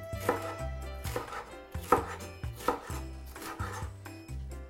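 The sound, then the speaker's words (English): A knife dices half of a bell pepper, cored and seeded, into thin strips on a cutting board in about six crisp, evenly spaced chops, heard over a soft, steady musical backing with no one talking. “We're just gonna dice up our bell pepper.”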